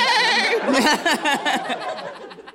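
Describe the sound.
A person imitates a horse's whinny, a loud, quavering cry that wobbles rapidly in pitch for about two seconds before trailing off into breathy fluttering.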